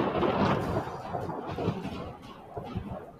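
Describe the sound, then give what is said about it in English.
A deep, rolling rumble of thunder from a storm outside, loudest at the start and slowly fading over a few seconds, with a broad noisy wash behind it and no one speaking. “It's too loud outside. Storm's what is with that storm?”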